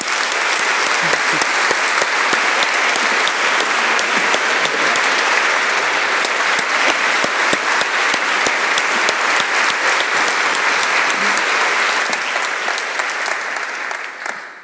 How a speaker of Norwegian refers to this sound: Gi Ane Farsetås og Karl Ove Knausgård en varm applaus.